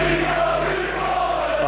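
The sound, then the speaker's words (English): A large crowd of Wrexham football fans singing together and clapping, serenading player Mullen as he goes to be interviewed on TV, a loud, continuous chant with a sustained melodic tone over dense crowd noise, no individual voices standing out. “That is brilliant to see that, the Wrexham fans serenading Mullen on the TV.”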